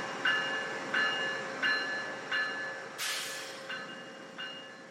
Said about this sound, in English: We get there, and it's a train. I mean, it showed up, a little late, was a train, left again.